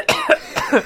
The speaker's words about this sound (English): Not the first to cough.